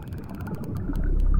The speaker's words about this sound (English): These are the whistles and clicks of killer whales hunting in Norway.